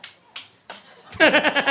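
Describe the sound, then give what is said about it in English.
Three slow, sparse claps from one person ring out alone, each a short sharp smack, before a voice comes in loudly over the end. “The one lonely clap was like, I believe in love.”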